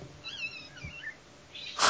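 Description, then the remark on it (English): A house cat gives a few short, warbling chirps and mews, then a brief rustling burst as it is picked up and held in a lap. No one speaks. “I have picked up the cat, sorry.”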